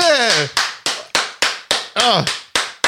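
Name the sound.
applause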